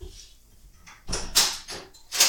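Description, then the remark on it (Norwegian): A door is pushed shut, with a series of sharp knocks and rattles over about a second, then one final firm thud as it latches. No one speaks. “Nå lukket døren satt der, så nå går jeg og lukket den”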